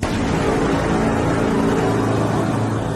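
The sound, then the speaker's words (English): A steady, loud engine rumble runs continuously, like a car driving past or idling under power, with no voices and no breaks in the drone. “And hopefully that car is not a self-driving car.”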